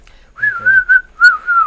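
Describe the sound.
A fairly loud whistle in a few short phrases, its pitch sliding up and down like speech: a person whistling in imitation of the Clangers, the puppet characters of the BBC CBeebies show The Clangers.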